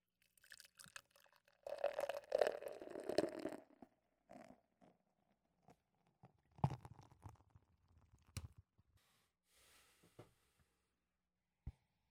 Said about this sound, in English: Here's Fantastic Haze, man. Beautiful. All right, let's get this pour on.